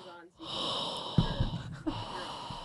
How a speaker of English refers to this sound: Yeah, it's just breathing, I think. It's the heavy breathing, right? It's your heavy breathing.